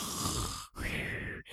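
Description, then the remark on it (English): A person imitates snoring with two drawn-out, raspy breaths separated by brief pauses, fairly loud, with no other talking. “But for the people that don't, remember, snoring is this.”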